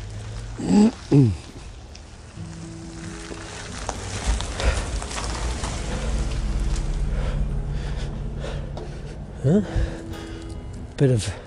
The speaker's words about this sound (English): Bit of traffic around here. Oh, we're on the Pine Creek Avenue.